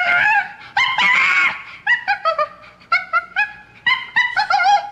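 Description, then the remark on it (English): Monkey sounds: a series of shrill, yelping calls in quick bursts, rising and falling in pitch, loud, with no talking. “Actually, monkey sounds a little bit like Billy the Spaz.”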